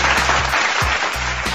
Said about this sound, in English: Give Dr. Rashad Ritchie a round of applause. I get a lot of my content from Dr. Rashad Ritchie. Good brother. That brother, another round of applause.